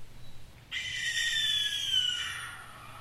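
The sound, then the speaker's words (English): A single long, harsh, raspy screech of a barn owl, loud, drawn out for about two seconds before trailing off, with no voices present. “That's the barn owl. Sounds like a murder. Sounds like a ghost.”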